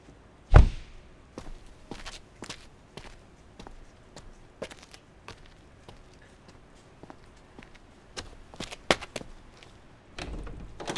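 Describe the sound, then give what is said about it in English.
Footsteps tap along at a steady, unhurried pace and are fairly quiet. They come after a heavier thump near the start as a man opens the door of a house on arriving. No one speaks. “Just as he opened the door, he yelled, "Mom?”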